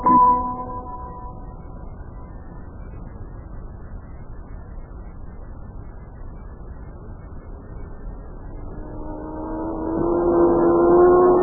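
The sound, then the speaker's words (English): A race car engine whines and fades away, leaving a steady low rumble, then another high-pitched roar builds loudly as a car speeds closer near the end, during time trials on a racetrack, the car going at least 100 miles an hour. No one speaks. “I'd say that there race automobile was moving along there at approximately”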